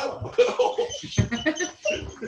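A dog named Arwen squeals and whines in a series of short, high-pitched bursts, fairly loud, with brief pauses between the cries and no talking.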